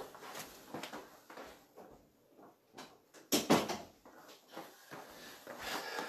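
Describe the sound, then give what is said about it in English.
A speaker closes their door with a sharp knock, preceded and followed by shuffling, rustling handling noises and light taps. “I need to close my door real quick.”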